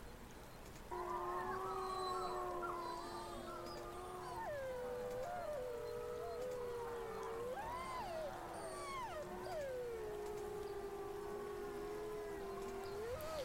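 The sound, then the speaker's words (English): A chorus of wolves howls together, several long, sliding wails rising and falling and overlapping continuously for over ten seconds, sounding somewhat far off with no one speaking. “And as all this is going on, in the distance, you hear the sound of howling.”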